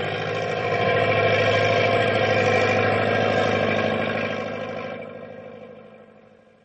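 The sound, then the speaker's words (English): A heavy truck engine drones steadily and loudly with a low, strained rumble as it labors through snow drifts, holding for several seconds before gradually fading away. No voices are heard. “Boy, going's really getting rough, even for Big Brute. Nothing to worry about, pal. I still have two lower gears to shift into.”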